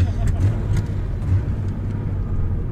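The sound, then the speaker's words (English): A car drives along with a steady, loud low rumble of engine and road noise, as if heard from inside the cabin, while faint voices murmur underneath. “Wow, I love this car.”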